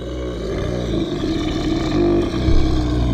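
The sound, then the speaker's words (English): A troll's deep, wild, terrifying roar rumbles continuously for about three seconds, loud, with a throaty, growling low end and no talking; the troll roars as it turns and sees Harry after a broken piece of sink hits the wall next to its head. “It roars, a wild, terrifying roar.”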